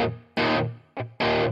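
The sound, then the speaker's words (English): Distorted electric guitar strikes four loud, crunchy chords in an uneven rhythm, each ringing out with a reverb tail before the next hit. No one speaks. “Yeah, it seems like a lot of reverb.”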